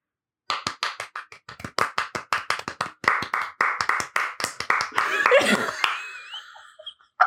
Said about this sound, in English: Why did your clapping sound like fucking?